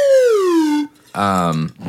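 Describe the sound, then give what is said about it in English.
A car alarm sounds: a loud, tonal whoop sliding down in pitch, then a brief pause and a harsh, buzzing honk-like blast, with a short bit of the pattern starting again. “Somebody's car alarm's going off.”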